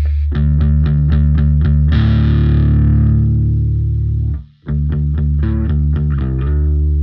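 Loud electric guitar through an amp on its clean sound, set by the volume knob, with a clean but slightly gritty, slightly driven tone: quick repeated picked notes, a long ringing chord, a brief cutout, then more rhythmic picking.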